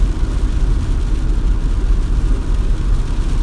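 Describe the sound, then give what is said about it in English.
Heavy rain pours down in a steady, dense roar, strongest in the low rumble with a fine hiss spread across the top, constant in loudness throughout with no voices. “And it's raining pretty fucking good.”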